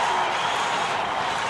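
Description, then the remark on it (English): A basketball crowd at a Bulls game applauds the Bulls' effort in a steady, dense wash of clapping and cheering noise that holds at an even loudness throughout, with no clear individual voices. “Bulls got a nice hand in the crowd. They appreciate the effort here tonight.”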